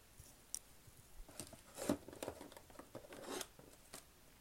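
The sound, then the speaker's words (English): A pair of scissors is handled and put back in place, with a few short metallic clicks and soft rustling scrapes scattered across a few seconds, fairly quiet, with no talking. “Scissors back here.”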